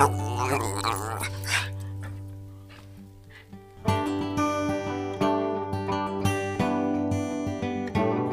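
A dog barks and yips repeatedly in loud, high-pitched bursts, with a short lull before a fast, excited run of barks and whines, all over a steady low hum.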